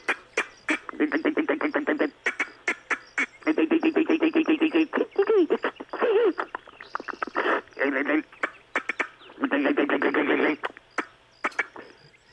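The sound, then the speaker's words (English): A voice imitates a squirrel chewing nuts in a pocket, with rapid, rattling bursts of clicky, buzzing chatter, broken into several loud runs with short pauses and a few sharp snaps in between. “Have you ever heard a squirrel eating nuts in your pocket”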